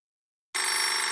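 After a brief silence, a telephone bell starts ringing abruptly: a loud, continuous metallic trill that carries on to the end with no voices.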